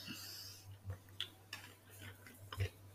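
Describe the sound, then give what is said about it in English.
Faint, irregular ticks and clicks sound over a low steady hum, a handful of small sharp taps spread across a few seconds with no one speaking. “Oh, so it's still ticking?”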